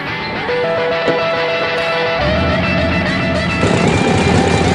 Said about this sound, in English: Getting on his motorcycle, driving away.